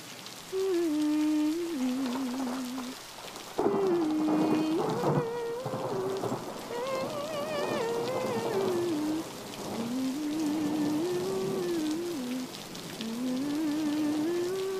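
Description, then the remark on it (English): Steady, hissing rain pours throughout a stormy scene, with a low rumble swelling near the middle and a wavering, moaning tone drifting up and down over the downpour. “Before you know it, you'll wake up, and the storm will be over.”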